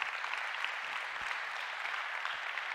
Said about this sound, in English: Can we just give God a round of applause for that?